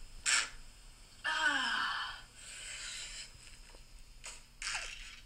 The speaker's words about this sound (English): She's slapping this cake, dude.